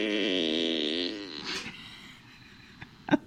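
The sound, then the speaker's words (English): A loud, buzzy fart with a wavering pitch lasts about a second, then fades into quiet rustling broken by a couple of sharp clicks near the end. “Good farts.”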